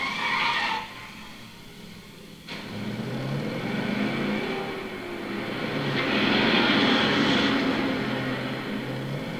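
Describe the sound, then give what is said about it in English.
A car engine in a film scene rumbles and grows louder as the vehicle approaches, a steady mechanical drone with rushing noise that swells toward the end, with no voices. “Oh, it's just a ghost car.”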